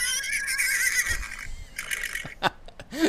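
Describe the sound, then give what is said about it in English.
A person imitates a horse's whinny, a long wavering, high-pitched neigh followed by a few short breathy snorts and clicks, with no other talking. “I want to hear your best horse noises.”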